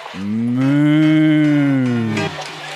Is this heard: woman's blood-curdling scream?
no